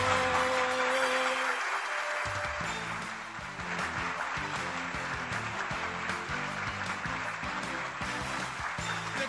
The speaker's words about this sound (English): See, the applause is still playing, so when I played that, it's still playing because I didn't stop the other one.